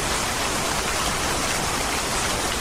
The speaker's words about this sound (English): It was just bizarre. You know, here we are in the middle of a forest fire and then it's raining buckets.